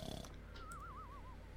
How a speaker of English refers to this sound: I'm gonna add some snoring effects in here.